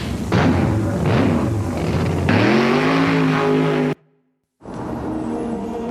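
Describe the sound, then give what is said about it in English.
A car engine revs loudly, its pitch climbing steadily as it accelerates, before cutting off abruptly into a brief silence and a return of steady roaring noise. “Anyway, let's climb in and take a sip on the out-of-date, half-finished cola on the back seat and go”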